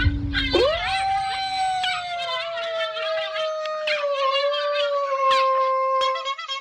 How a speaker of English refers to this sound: Motherfuckers gotta understand, do you hear how goofy that dog sound?